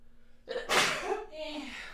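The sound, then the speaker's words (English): A single fairly loud sneeze: a quick inhale followed by a sharp, bright burst that trails off into a short breathy tail. “I had to sneeze.”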